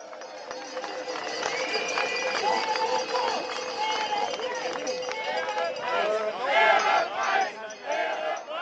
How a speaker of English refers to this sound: Public displays of anger, like this protest by dairy farmers in Brussels, have become a common sight in European capitals this year as they see returns from milk plummet.